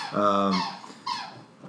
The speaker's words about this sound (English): You can hear Rio's got a squeaky toy. He gets so excited.